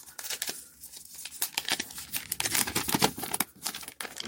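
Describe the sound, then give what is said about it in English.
Thin plastic wrapping is peeled and crinkled off a new phone during an unboxing, in a run of bright, irregular crackles and short tearing rasps lasting a few seconds, with no talking. “I'm going to pull this wrapping off of it.”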